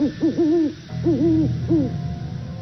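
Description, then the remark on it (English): An owl hoots three times in a steady rhythm, each call a wavering, mellow tone with a rising and falling shape, heard clearly against a faint low background hum. “Owl hoots.”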